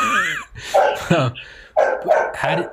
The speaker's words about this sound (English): I know your dog has some opinions. There he goes again. Yeah, he's got opinions about Trump.